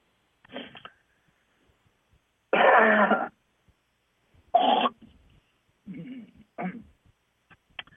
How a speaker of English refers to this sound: Well, all I got to say is sometimes you got to clear your throat.